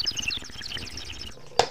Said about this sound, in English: I hear birds. Sorry, that was me doing a bong rip, son.